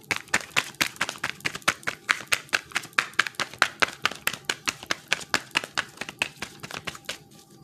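A thick deck of cards is shuffled in a steady run of quick, crisp slaps and flicks, about four per second, fairly loud, with no talking.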